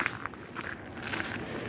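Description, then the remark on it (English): Several irregular footsteps squelch and splash through flooded ground after heavy rain, each step a soft, moderately loud wet crunch over a steady low background hiss, with no voices. “There's a lot of flooding here, so I have to watch my step here.”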